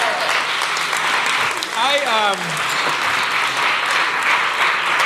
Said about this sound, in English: This is my guy who yelled, ooh, get up here. Give him a hand, everybody.